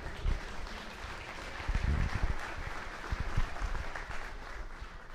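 A crowd applauds steadily, a dense wash of many hands clapping at an even loudness throughout, with no voices over it.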